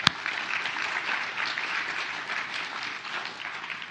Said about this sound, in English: So, we've had an awesome celebration so far. We've had, you know, awesome baptisms, so let's give them a round of applause.